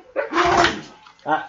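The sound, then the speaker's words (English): Dogs bark and whimper in two short bursts, a longer, louder outburst followed by a brief, softer whine after a short pause. “Now I got dogs getting all aggro.”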